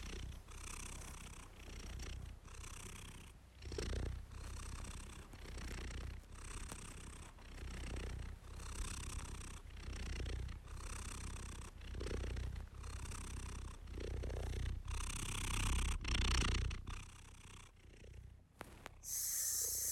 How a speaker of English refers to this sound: this week we'll be exploring and diving into the animal kingdom with different memories and poems while listening to the hum and purring of a cat.